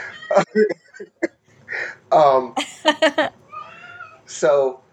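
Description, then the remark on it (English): A cat meows repeatedly and insistently, several drawn-out, wavering cries mixed with short chirps, with a person's voice talking in between. “Kitties, they interfere.”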